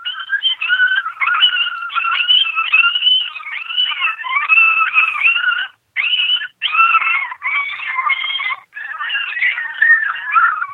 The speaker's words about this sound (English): Yep. Here's canine pups. I'm gonna...